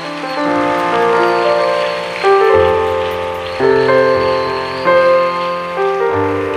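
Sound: audience clapping hands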